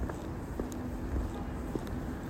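Footsteps at a steady walking pace, a handful of distinct soft steps over a constant low rumble of background noise, not loud.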